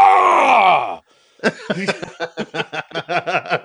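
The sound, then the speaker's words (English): A voice imitates an older dad's drawn-out groan of effort as he gets out of a chair, the pitch sliding downward for about a second, followed after a short pause by a run of rhythmic, breathy laughter. “I think older dads just like to make noise. My dad's the same way. Really? Getting out of the chair.”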